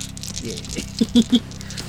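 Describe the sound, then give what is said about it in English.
Dice from the firm Die Hard Dice clatter and click as they are picked up and shaken: a scatter of light taps builds into three sharp, louder clacks in quick succession over a low steady hum. “pick up her dice for more clicky clacky math rocks”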